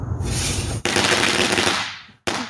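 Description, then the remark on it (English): Loud, rapid bursts of July 4th fireworks explosions crackle and pop in a dense barrage, broken by two brief gaps, with no voices. “Now that's the kind of fun, and those are the kind of explosions we want to see when it comes to July 4th.”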